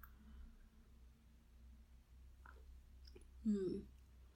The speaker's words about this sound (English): Have a sip of your cup of coffee and notice the taste, how it feels.